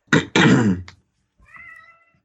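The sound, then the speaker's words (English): A loud, harsh cat yowl, followed after a short pause by a softer, drawn-out meow, produced by a white noise machine rather than a real cat. No voices. “No, it's not like a real cat. It's just like a white noise machine. Oh. Produces a cat sound.”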